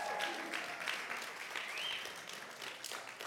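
An audience applauds steadily for a few seconds, a dense wash of hand claps with a few brief cheers or whoops rising above it.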